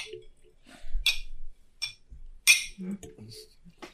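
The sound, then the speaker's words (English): Glasses clink together in a toast, a few bright, sharp chimes spaced irregularly over a few seconds, with soft murmuring voices and low thumps between them. “And I will raise this glass and thank you once again for fucking being that, boys.”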